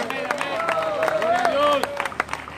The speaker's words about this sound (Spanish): Los que crean, levanten las manos, aplaudan. Digan amén, digan ay, ay, ay, digan aleluya.